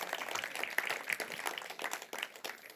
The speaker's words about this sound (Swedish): Fantastisk familj som har kommit till oss förresten. De är värda en applåd också faktiskt. Vi är på applådhumör idag.